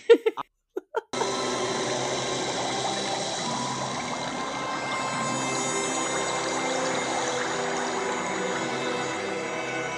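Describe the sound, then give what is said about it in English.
A few quick sharp bursts, then a steady, loud hissing sizzle of Doug Bradley's character's hand sizzling in a haunted birdbath in a film scene, bubbling and frothing without a break, with a faint tonal whine running underneath. “That, my friends, was the sound of Doug's hand sizzling in the haunted birdbath.”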